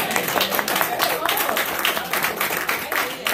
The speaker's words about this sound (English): Let's give mothers another hand clap of praise.